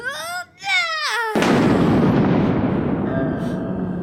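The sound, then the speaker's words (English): A wavering, high-pitched vocal wail gives way to a sudden, loud crack of thunder as a giant hammer made of lightning is summoned, rolling on as a heavy, noisy rumble, slowly easing with a faint ringing tone near the end. “Oh, a giant hammer made of lightning.”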